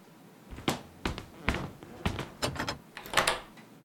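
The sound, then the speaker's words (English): A door is shut and locked: a run of about six solid thuds and clunks at uneven intervals, fairly loud, with no talking. “Well, just make sure the door's locked. Yeah, I just did.”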